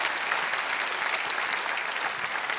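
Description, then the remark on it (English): A church audience claps their hands for those who have been serving God for 30 years or more, in steady, dense applause, many overlapping claps forming a loud, even wash of sound for a few seconds without pause. “Wow, can we clap our hands for these that have been faithful for 3 decades?”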